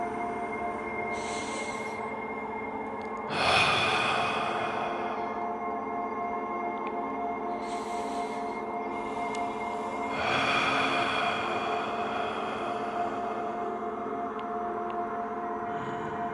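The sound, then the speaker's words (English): Slow, deep meditative breathing by a guide for listeners to follow, about four long inhales and exhales in a steady, unhurried rhythm over a constant low humming drone, with no talking. “Close your eyes. Listen to my breathing. Fall in sync with me.”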